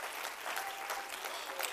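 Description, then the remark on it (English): An audience at a worship service claps together after the preacher's call to clap their hands and shout to the Lord, a dense, steady wash of applause, many hands blending into continuous bright crackle with no voices standing out. “Oh, I wish somebody would clap your hands and shout to the Lord with a voice of triumph.”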